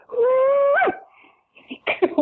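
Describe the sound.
A single shouted Australian cooee call: a long, steady, loud vocal tone that leaps upward in pitch at the end, followed after a short pause by people talking.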